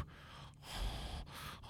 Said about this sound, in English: Add a little breathing. You sound like you're doing something very inappropriate.